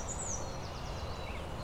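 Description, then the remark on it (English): A black-and-white warbler sings a faint, thin, very high-pitched series of squeaky, sliding notes over a steady hiss of background noise. No one speaks. “Black and white warbler, I'm more expecting kind of a cedar forest.”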